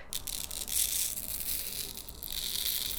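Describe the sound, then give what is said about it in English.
Fine manganese oxide powder dumped onto a sheet of paper: a steady rustling hiss with light paper crinkling, continuous for a few seconds at a fairly quiet level, with no talking. “I'll have to dump some of it on this paper here.”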